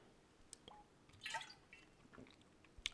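A quiet drink of water: faint wet sips and a soft swallowing gulp near the middle, with small clicks of the mouth around it and no talking.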